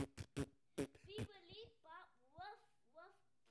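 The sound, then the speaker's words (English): A few short, buzzy mouth-made fart noises burst out in quick succession, followed by silly wavering vocal noises, as if someone is playfully blowing raspberries and squealing. “It could just be a bunch of farts.”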